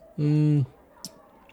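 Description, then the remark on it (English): A steady hummed "mmm" of someone savoring the finish of a wine, lasting about half a second, followed by a single faint mouth click, then quiet. “You should just listen to me savoring the finish.”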